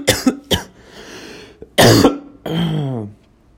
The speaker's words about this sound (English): Right, like I'm coughing and hiccuping and I'm still smoking.